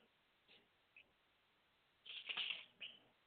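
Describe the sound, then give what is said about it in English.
A couple of soft ticks, then a short papery rustle and crinkle as a paper page is turned, fairly quiet, with no talking. “I want you to be able to hear the paper turn too.”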